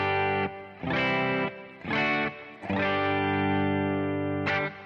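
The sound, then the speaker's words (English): Clean electric guitar chords ring out in four strums, each sustaining with a reverberant tail before the next. The final chord holds longest. Solo playing with no voices. “So you need a clean sound and you need some reverb, and then you're going to need some different stages of gain.”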